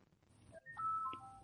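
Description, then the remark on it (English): A phone rings with an incoming call, a short electronic ringtone of a few steady beeping notes stepping in pitch, fairly quiet over a low background rumble, with no one talking; the call is not answered. “And I got a phone call. How rude. It's like, no, I'm not answering this right now.”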